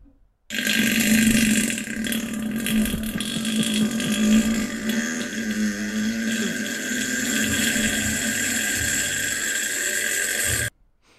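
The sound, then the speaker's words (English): A single long, loud fart drones on for about ten seconds, buzzy and steady with slight wavering in pitch, with no one talking, played from a video on a page called Only Farts. “Is this page called Only Farts?”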